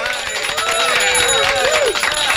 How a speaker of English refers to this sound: All the other ships were honking their horns. Big celebration.